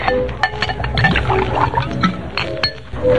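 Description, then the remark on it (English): Liquid pours steadily from a bottle into a glass for a few seconds, with light glassy clinks and a gurgle, moderately loud, with faint background noise. “Just put the bottle down, Harry. Go take care of them customers down there. All right. Don't talk in riddles, Patsy. Pour yourself a drink.”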